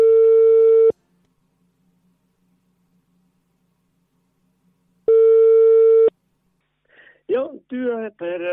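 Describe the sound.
A telephone ringback tone sounds twice, each a steady one-second electronic beep separated by about four seconds of near silence, before a man's voice comes on the line and starts talking in a phone interview.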